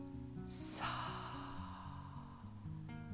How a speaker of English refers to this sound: And with your hand on your heart, I would like you to take three deep breaths with me now. Breathing in. Breathing in again.